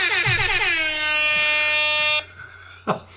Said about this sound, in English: we have an alarm that Sam is in control of